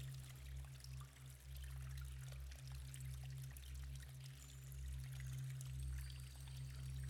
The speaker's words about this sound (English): The hot waters, they bubble about you softly. As fresh water, it falls in beside you from a small spout.